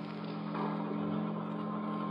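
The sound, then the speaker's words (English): The ship whistle of a banana freighter, the Susie Q, at Pier 17, Hoboken, sounds one long, steady low blast with a droning, buzzy tone, holding at an even volume for the whole stretch with no voices. “Alone at last on Pier 17, Hoboken, a banana boat was whistling hello to the USA.”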